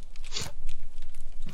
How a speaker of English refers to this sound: I got to cleanse my palate with a Cheez-It real quick.